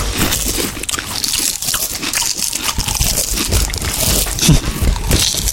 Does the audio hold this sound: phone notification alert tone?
no